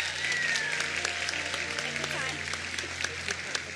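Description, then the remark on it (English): A large crowd applauds steadily, dense overlapping hand claps with a few sharper claps standing out, while a voice speaks faintly underneath. A church audience claps during a morning service to welcome one of the children's pastors up. “And church, since we got a good hand clap going this morning, would you welcome one of our children's pastors up this morning,”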